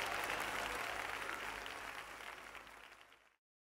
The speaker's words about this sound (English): Now give God a big hand clap and a big shout. Come on, give God a big shout. Come on, give God a big shout.